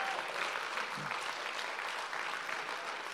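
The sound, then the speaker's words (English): A crowd gives a man a round of applause after he demonstrates something, clapping steadily, the dense patter of many hands holding an even level for the whole stretch without any voices standing out. “Give him a round of applause, that's awesome.”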